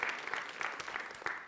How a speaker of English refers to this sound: So if we could just honor them for a minute and give them a round of applause.